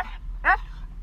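A dog named Bodhi gives one short, sharp bark, preceded by a faint, brief whimper, with quiet background noise in between and no one speaking.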